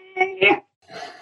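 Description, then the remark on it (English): A brief noise resembling a cat's meow: two quick, wavering tonal cries followed by a breathier, drawn-out one, all within about a second. “Sounded like a cat meowing.”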